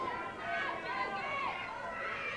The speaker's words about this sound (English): Listen to this crowd, USA, USA, USA